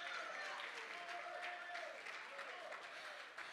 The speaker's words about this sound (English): Come on, if you believe the power of God still changes, why don't you clap your hands unto Jesus? Yes!